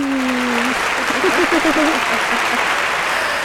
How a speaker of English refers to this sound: Okay, I think I have your applause. I have your applause.